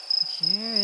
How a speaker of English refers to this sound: Is that a cricket? Ooh. Yes, it was.